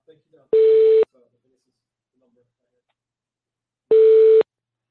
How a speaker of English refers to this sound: because I can hear somebody. I hear something ringing on the line.